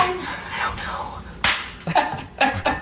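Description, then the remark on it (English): A few sharp, flat, loud smacks of a tortilla slapping against someone during a game of Tortilla Fact or Slap with personal trivia questions, following a stretch of excited voices and chatter. “Here, I have a little clip from Tortilla Fact or Slap.”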